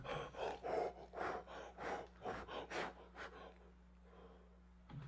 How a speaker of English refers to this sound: I'll start breathing on it